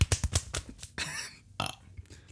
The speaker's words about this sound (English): Where's the burps coming from? Where's all this gas? My belly's empty. I'm so hungry that I have to burp.